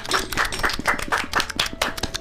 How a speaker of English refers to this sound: Round of applause!